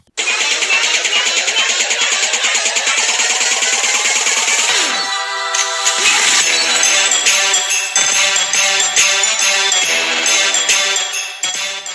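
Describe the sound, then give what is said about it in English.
A loud monkey sound effect plays alone: rapid, pulsing, high-pitched chattering for several seconds, then shifting into shrill, sustained screeching calls that continue until the end. “Monkeys in the back. Hit that sound effect.”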